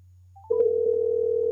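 A short phone beep gives way to a steady, loud telephone tone, like a line tone after dialing, over a constant low electrical hum. No one speaks.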